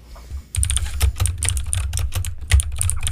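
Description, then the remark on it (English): Rapid, uneven clatter of keys being struck on a computer keyboard, picked up by a microphone aimed at the keyboard, fairly loud, continuing steadily for a few seconds after a brief quiet start, with no voices. “He's got his mic aimed at his keyboard.”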